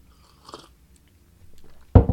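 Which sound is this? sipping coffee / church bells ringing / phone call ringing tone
sipping coffee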